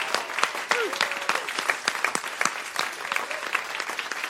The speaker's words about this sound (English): Can we have another round of applause, please, for all of our artists and writers and creatives tonight?